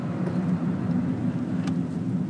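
A car's low, steady engine and road rumble heard from inside the vehicle as it stops very suddenly for a traffic light that has just changed, with a constant drone and no one talking.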